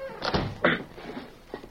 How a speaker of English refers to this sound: close the door. You do it.